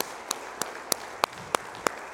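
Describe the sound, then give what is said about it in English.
An audience giving a hand clap of praise to God: six sharp, evenly timed claps land in a steady beat over a soft, continuous wash of crowd noise, with no one speaking. “Let's give him a hand clap of praise together today, please.”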